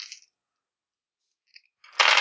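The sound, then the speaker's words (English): Dice clatter on a table: a brief rattle, a pause, a couple of light clicks, then a loud, dense burst of rolling dice at the end. “Hold on, it kind of ended up with my other dice, so I'm just going to re-roll that one.”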